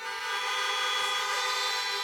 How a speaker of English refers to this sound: Hey, if you could hear me out in the parking lot, honk your horn.